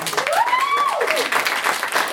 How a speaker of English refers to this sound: I just feel the need to point out we had a whole table of people booked to see us tonight. Can we have a round of applause from you?